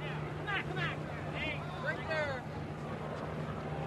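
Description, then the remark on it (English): A steady, low mechanical drone of three Army helicopters flying surveillance overhead above a section of Washington's highway system fills the scene without letting up, while faint voices come and go in the background. “One, two, three, Army helicopters flying surveillance over this small section of Washington's complicated highway system.”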